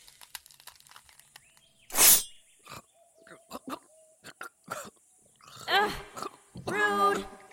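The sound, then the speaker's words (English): A single sharp, harsh cough bursts out into another person's face, followed by scattered clicks and then loud, strained, growling vocal noises with rising and falling pitch. “Coughing in my face like that?”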